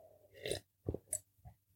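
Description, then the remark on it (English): Someone sips coffee: a soft slurp followed by a few quick, quiet swallowing and mouth sounds, with no talking. “Hang on, I have to take a sip of my coffee.”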